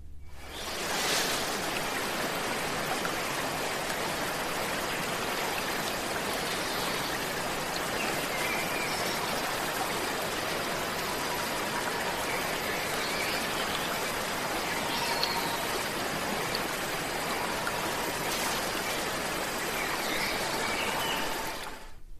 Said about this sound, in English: That was one of thousands of waterfalls on this planet.